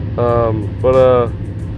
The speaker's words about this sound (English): Sitting in my truck doing this one.